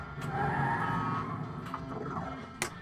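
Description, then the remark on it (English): Race car sound effects from a pinball machine's around-the-track feature: a steady, buzzing engine roar with squealing tones, punctuated by a few sharp mechanical clicks, fairly loud, with no one talking. “Okay, I wasn't expecting the around the track thing to start.”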